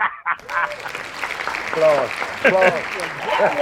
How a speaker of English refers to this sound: Applause. Outstanding.